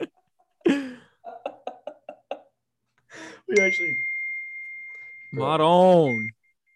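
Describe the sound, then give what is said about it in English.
A phone ringtone sounds amid voices: a quick run of short, evenly spaced electronic pulses, then a steady high-pitched beep tone that holds for a few seconds while a person talks over it. “Like, do I shut off my phone?”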